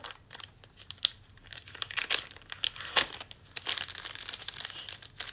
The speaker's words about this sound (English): Also, I like the sound of the paper whipping.